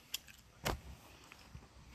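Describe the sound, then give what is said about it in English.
Keys jangle softly in a few brief metallic clinks, with one fuller rattle in the middle, fairly quiet and with no one talking. “Where my keys?”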